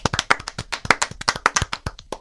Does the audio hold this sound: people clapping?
yes